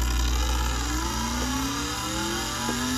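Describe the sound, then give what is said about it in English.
A car engine in a Sega racing video game revs hard at high speed, its whining pitch climbing steadily in repeated surges over a constant roaring hum. It's loud, with no voices. “Okay, we're going super fast. I can tell by the rev engine and how fast this is going.”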